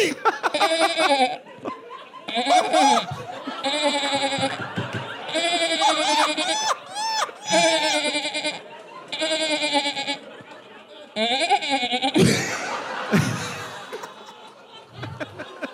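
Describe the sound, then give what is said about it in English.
Loud goat-like bleating, made by a person with a cup, comes in a steady run of quavering, wavering cries separated by short gaps, ending with a few harsher, noisier bursts. “That's Billy Goat for when I was a young warthog.”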